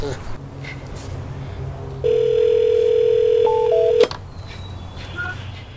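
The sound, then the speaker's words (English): A phone line opens with a steady, buzzing dial tone for about two seconds, then a couple of quick higher keypad beeps as a call is placed from a backyard, over a low background murmur. “Get him on the horn since he doesn't like to come to the show anymore.”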